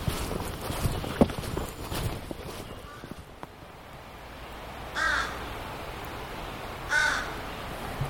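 Two separate crow caws ring out a couple of seconds apart from crows hanging out in the treetops overhead, unhurried, over a background of outdoor rustling and faint footsteps on a muggy, hot day.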